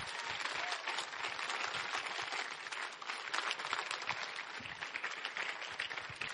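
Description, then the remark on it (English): An audience breaks into sustained applause for the children and the Kids Church leaders and helpers, dense overlapping claps holding steady and fairly loud for several seconds with no voices over it. “So if we could just give them another round of applause.”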